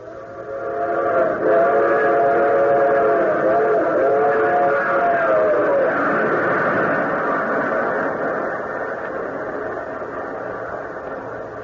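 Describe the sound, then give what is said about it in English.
A train rolls steadily along the rails with a constant loud rumble, while a drawn-out whistle sounds over it for several seconds near the start before fading back into the clatter. “The colonel boarded train at Washington.”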